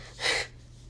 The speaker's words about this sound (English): I will never edit this. Maybe I would edit edit out my hard breathing.